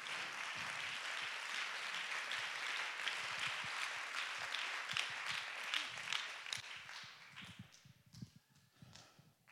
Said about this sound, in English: Come on, clap your hands and give God the praise.